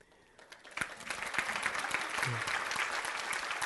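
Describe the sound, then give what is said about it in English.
A church audience breaks into applause for the preacher's 20 years of preaching, starting with a few scattered claps and quickly swelling into steady, dense clapping that holds strong to the end, with faint voices mixed in. “You know, I said that last service and nobody clapped.”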